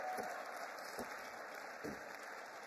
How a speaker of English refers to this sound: Give our kids ministry team a big round of applause.